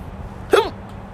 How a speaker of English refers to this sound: Fuck me, these hiccups are bad.